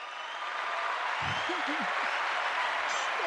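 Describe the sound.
Steady, dense applause from a crowd fills the whole stretch at an even level, and a brief voice pokes through the clapping partway in.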